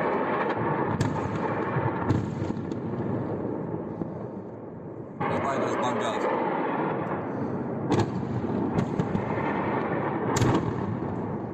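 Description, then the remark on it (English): A night helicopter attack on an oil depot in Russia by helicopters from Ukraine: a steady, heavy roar fills the whole recording while about half a dozen sharp blasts crack through at irregular intervals, with a sudden louder surge midway. No one speaks. “But I have video of the attack taking place, so you can see it's actually coming from helicopters, but it happened at night, so here is that.”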